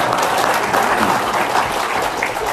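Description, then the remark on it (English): An audience claps steadily in a dense wash of applause, a loud, even crackle of many hands with no pauses, lasting a couple of seconds. “Would you give him a little round of applause?”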